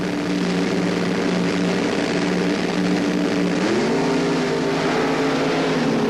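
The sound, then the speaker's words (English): A constant, thunderous roar of top fuel dragster engines racing in a quarterfinal round, cars powered by aluminum racing engines, the deep drone climbing sharply in pitch partway through as they accelerate, with no voices. Pat Dakin wins by a car length over Grant Stoms in 6.06 seconds at 236 miles an hour. “All cars are being powered now in top fuel at this event by an aluminum racing engine.”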